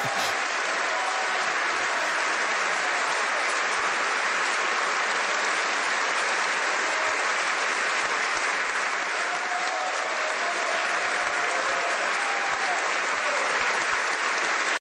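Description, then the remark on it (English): Sustained, dense applause from a large crowd in North Korea, steady and loud for the whole stretch without letting up, like a standing ovation with no voices rising above the clapping. “Long applause, maybe like a standing ovation.”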